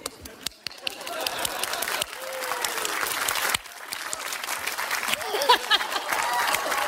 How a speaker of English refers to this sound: Clap louder, he'll hide more.